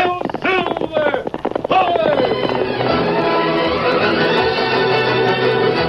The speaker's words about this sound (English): From out of the past come the thundering hoofbeats of the great horse Silver.